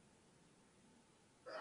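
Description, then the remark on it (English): After a stretch of quiet room tone, one abrupt sneeze bursts out at the very end, sharp and breathy, with no one talking. “Bless you.”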